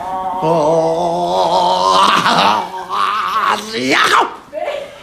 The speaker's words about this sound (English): That's how the lady on the podcast right now. That's how she yawns.